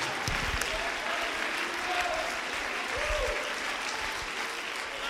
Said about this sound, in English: Stand on your feet and clap your hands and love your God and magnify his name if he's ever been good.